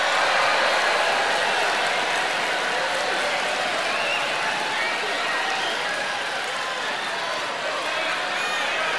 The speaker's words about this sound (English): Okay, here we go. Now, one, two, three. Cheer them on, guys, come on.